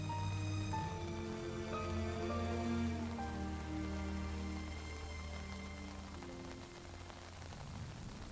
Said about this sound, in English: Walking out from the porch, you walk into the rain. Feeling every tap from every raindrop that falls from above.